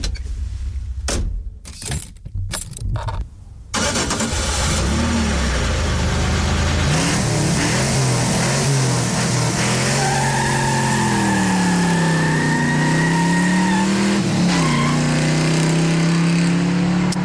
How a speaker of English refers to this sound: Or a car door ignition and then drive-off sound effect. I love the car door ignition and drive-off sound effect.